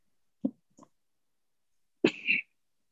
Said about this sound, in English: Did he just cough?